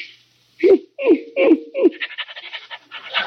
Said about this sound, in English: Oh, you got a St. Bernard. Nice doggy.